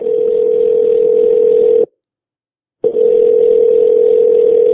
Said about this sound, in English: As the phone is dialing, I'm realizing you're the worst person I should ask this question to, but it's too late because I already called you.